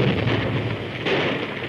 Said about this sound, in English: The second explosion rent a gap in the back of the cavern.